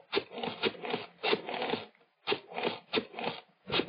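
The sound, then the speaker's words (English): A telephone is dialed: a run of quick, raspy ratcheting whirs, one after another, with a brief pause partway through. No one speaks. “knowing how foolish it was, knowing it, went to the phone and dialed.”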